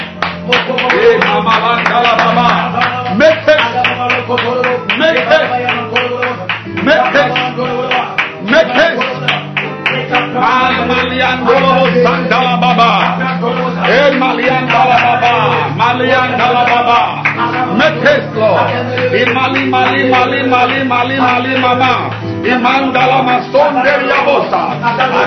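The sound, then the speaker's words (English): A crowd claps steadily for the whole stretch, a dense patter of hands under many overlapping voices praying aloud at once, loud and continuous without pause. “Begin to clap your hands and pray right now.”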